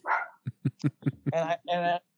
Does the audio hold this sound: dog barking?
yes